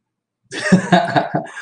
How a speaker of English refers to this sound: Go to full screen for a second so I can blow my nose, Mr. Producer.